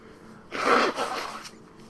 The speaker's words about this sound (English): Are you there? Yeah, sorry, I was sneezing. Oh, okay. I still have not completely gotten over my cold, I don't think.